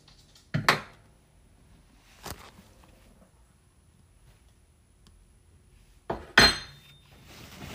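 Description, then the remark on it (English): Dishes and cutlery clatter as someone rummages for a spoon, in three separate bursts: a sharp double clink, a lighter knock, then a loud clatter with a brief metallic ring, with quiet pauses between and no talking. “Okay, Where's my stupid spoon?”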